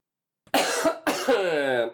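A person coughs twice, two harsh, loud bursts, the second stretching into a strained, high-pitched vocal wheeze before fading.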